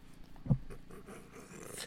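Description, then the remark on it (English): A dog pants in quick, breathy huffs, with one louder snort-like burst early on, and no talking over it. “Dog wants some weed.”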